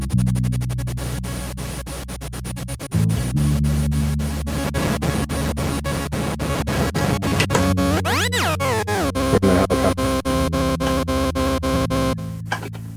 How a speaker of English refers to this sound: And here we are, in the elevator, I mean, in the helicopter. We're in the helicopter right now.